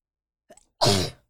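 A single forceful sneeze: a brief sharp inhale followed by an explosive burst that trails off quickly, with no talking.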